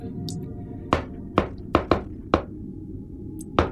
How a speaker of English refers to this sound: would know the knock to get you in to the front gate without issue.